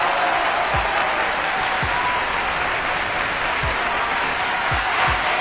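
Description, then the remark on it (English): Loud, sustained applause from a large crowd greeting the host of the Macron Show fills the whole stretch, a dense wash of clapping with a few low thumps scattered through it and no voices breaking through. “Yo, yo, yo, where's the cheering? Where's the cheering? No, louder, louder.”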